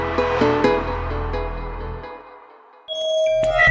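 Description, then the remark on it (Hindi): A battery-charged chime signalling 100% charging complete: a humming electronic tone fades out, and after a short pause a bright, synthetic chime rings out clearly and sustains to the end, with no voices. “Battery 100% charging complete.”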